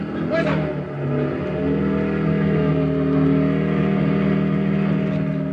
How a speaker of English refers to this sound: Then I borrowed a parked motorcycle. Just as the Germans were spilling out the front door, I drove off, headed back to where I'd buried the papers.